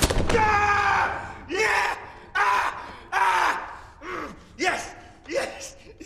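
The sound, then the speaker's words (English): In a James Bond film, a man being whipped in the groin with a ship rope gives a loud, drawn-out scream that turns into a rhythmic series of five or six short, pitch-bending moans and gasps that sound increasingly pleasured, with no words spoken. “But since emasculation is apparently illegal in the Bond universe, his screams turn into kind of a sexualized joy.”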